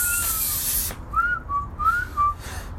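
A rush of breathy air, then a person whistles a few short sliding notes while breathing in, thin and slightly airy, with no talking.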